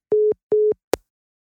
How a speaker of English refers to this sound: And it was at this precise moment when Peter realized the phone line went dead.